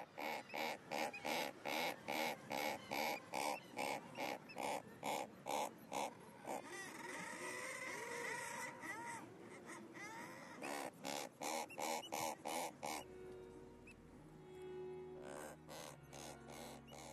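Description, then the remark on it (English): A razorbill calling from the rock crevice where it nests gives a rapid series of short, gruff, reverberant calls, loud, broken by a longer rasping growl midway before the clipped calls resume, with a low rumble at the end. “And razorbills seem to use their immediate acoustics of the crevices and holes in which they nest and vocalise to produce this short, reverberant call.”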